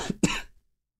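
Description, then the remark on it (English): A loud cough with some throat clearing: a short catch followed by a longer, harsh burst, then silence for the rest of the second. “I don't want to gross you guys out, but I'm going to have to put in a cough drop.”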